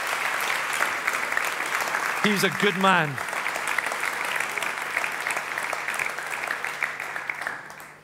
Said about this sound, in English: Come on, give him a round of applause.